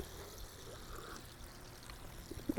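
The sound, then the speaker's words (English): Carbonated water is poured from a SodaStream soda maker in a steady, soft stream for a couple of seconds, with a brief louder splash or clink right at the end. No one speaks. “This is called a soda stream.”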